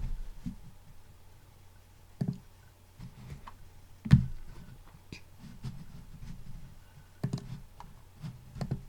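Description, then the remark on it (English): Irregular clicks and taps of someone typing on a computer keyboard, fairly quiet, with a few sharper louder keystrokes standing out against a soft low background hum; no one speaks. “Sorry if you can hear me tapping away on the keyboard.”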